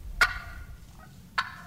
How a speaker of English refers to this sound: will rip out a thunderous gobble to attract hens and let other toms know who's top boss